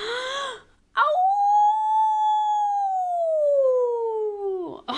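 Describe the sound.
After sucking in all the air, a person gives one long, loud wolf-like howl, as if howling at a full moon, a sustained voiced wail that holds steady and then slowly slides downward in pitch for several seconds before breaking off.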